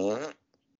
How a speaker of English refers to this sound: I'm sorry, I farted in the microphone. It happens. I'm sorry.